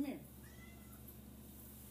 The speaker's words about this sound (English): Goddamn cat.